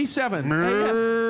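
A single loud, drawn-out cow moo with a rising then falling pitch that settles into a steady low tone before ending abruptly.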